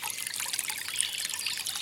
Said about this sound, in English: If your path passes water, hear the ripple of the stream, the occasional plop as a fish surfaces or a frog leaps into its depths.